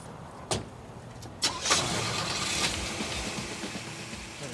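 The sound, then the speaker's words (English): A car door clunks shut, then an engine cranks and catches, settling into a steady idle that rumbles on with no one talking. “Let's get in the car, man.”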